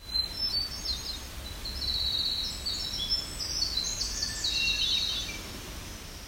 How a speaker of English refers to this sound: This one included Winter Wren and Hermit Thrush.